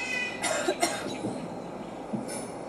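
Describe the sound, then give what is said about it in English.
A large pet raven named Mischief mimics the cough of people who have a cold: two quick, raspy cough-like bursts close together, then a pause and another short cough, over a steady hiss of background noise with no talking. “And sometimes he hears people who have a cold.”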